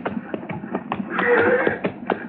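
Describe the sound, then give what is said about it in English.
Horses' hooves clop along at a steady trotting rhythm as riders ride down, a quick series of sharp strikes at moderate volume, with a brief higher, brighter sound rising over them midway through. The horses bear Granby's brand. “Now, let's ride down and say hello anyway.”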